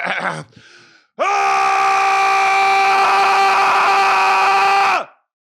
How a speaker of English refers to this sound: it's hard here, to scream on command, I guess. Let's do it.